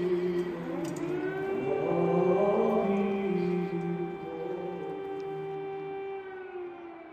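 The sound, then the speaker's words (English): Air raid sirens wail steadily in sustained, overlapping tones that swell slightly and hold, during a funeral service for three fallen Ukrainian soldiers in Lviv, Ukraine, heard alone without any talking. “And while they're mourning, while they're going through this funeral service, the air raid sirens start up, but no one moves and no one budges.”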